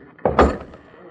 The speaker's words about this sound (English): Ah, it is unlocked. Now, open the door. Here we are.